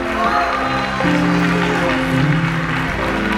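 An audience at Christian Faith applauds Jesus steadily, a loud, dense wash of clapping over a sustained low musical tone, with scattered voices mixed into the noise.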